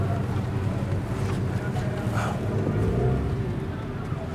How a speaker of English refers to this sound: took us out on his boat, and as we were slowly motoring down the Senegal River watching San Luis pass by, he told us that he took a much bigger boat that looked very much like this one when he tried to go to Spain.